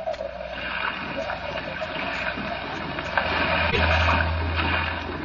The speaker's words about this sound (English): I must say the whole trip seems utterly ridiculous to me. Plunging and bobbing about in a little boat in a raging torrent